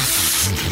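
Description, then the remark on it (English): A loud burst of Raid Sinus Formula aerosol nasal spray being sprayed up a nose: one steady hiss lasting under a second, with a faint low hum beneath and no voices. “Spray it up your nose, you coward.”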